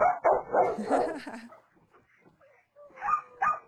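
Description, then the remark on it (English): The speakers' own dogs bark in a quick cluster of loud, overlapping yaps, fall quiet for a moment, then let out two more sharp barks. “That was our doggos.”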